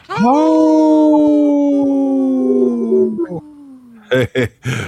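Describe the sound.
A person imitates a wolf with one long, loud, steady howl lasting about three seconds that slowly trails off, followed by a few short, sharp vocal bursts.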